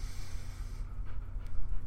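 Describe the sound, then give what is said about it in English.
A newly adopted female dog pants, soft, rapid breaths with a few snuffly bursts over a low background hum, no one speaking. “Just adopted a new dog yesterday, and she's in here now, coming to say hi.”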